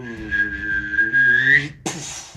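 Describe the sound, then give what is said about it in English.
A voice imitates the loud hum of an energy blade as someone takes a full swing with it: a steady, buzzing tone that climbs slightly in pitch for under two seconds, then cuts into a sharp, breathy burst like a swing. “Now, just as he goes to swing with this energy blade, you start to hear a loud humming sound.”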